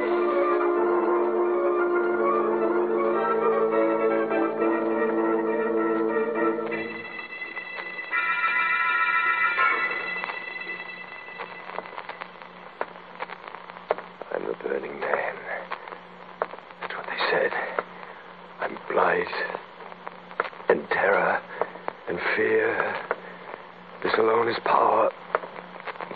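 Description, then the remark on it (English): Radio static over a tapped phone line in a radio drama, taken as the sign of the Burning Man on the line: a steady buzzing, tonal hum for several seconds, then muffled, narrow voices talking through the crackly connection. “I hear static.”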